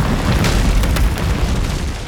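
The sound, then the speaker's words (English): A heavy boulder smashes against a rocky outcrop on a snowy slope in a deep, rumbling crash, with a few sharp cracks bursting through as the roar holds loud for about two seconds. “Just yards away, the boulder shattered against a rocky outcrop.”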